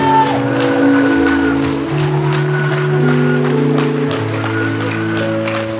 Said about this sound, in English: Now, give the Lord a mighty clap of praise. Come on, clap for Jesus. Clap for Jesus. Clap like you know what God has done.